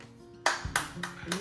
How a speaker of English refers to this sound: Wow. That was just a good clap.